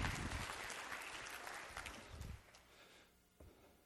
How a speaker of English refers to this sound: Go ahead. I got one hand clap back there.